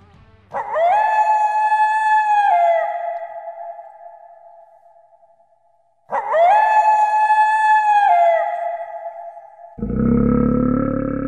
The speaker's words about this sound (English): The wolf howl.